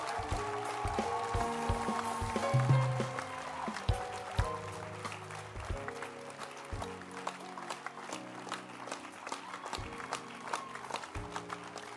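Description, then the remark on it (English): An audience claps hands for the New Believer School in a dense, sustained round of applause, loudest at first and easing slightly, with keyboard chords playing underneath. “Clap your hands. Your loudest hand clap should be for them.”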